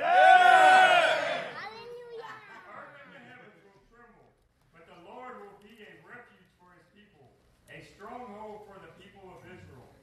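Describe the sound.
A person lets out a loud, raspy vocal roar for about a second and a half, imitating the Lord roaring from Zion during a reading of Joel 3:16. A voice then talks steadily, much quieter.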